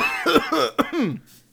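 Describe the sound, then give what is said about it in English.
A raspy fit of several quick coughs in a row, throaty and voiced, ending abruptly with no talking around them. “That was just a cough.”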